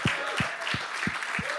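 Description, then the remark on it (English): A crowd applauds steadily, a dense wash of clapping from many hands, with a regular low thump pulsing underneath about three times a second. “And so, yeah, that deserves a clap right there.”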